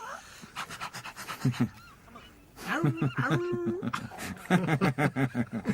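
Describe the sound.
A voice imitates a poodle being dragged, with bursts of rapid breathy panting and honking, whiny vocal sounds repeating, loud and rhythmic, with a brief quieter stretch in between.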